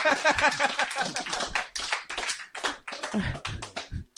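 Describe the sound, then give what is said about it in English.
A crowd claps steadily, the dense, crackling applause filling four seconds, with a brief tonal cheer rising above the clapping near the start. “That's it. The claps are building.”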